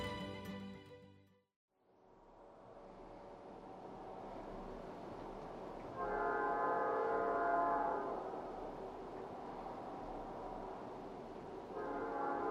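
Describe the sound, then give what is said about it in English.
A coal-laden train rumbles steadily past on the prairie, a continuous heavy roar, with a horn sounding at the start, a longer blast midway, and another beginning at the end. “At this point in the drive, I'm passing trains that are topped perfectly with coal, snaking to each side of the horizon.”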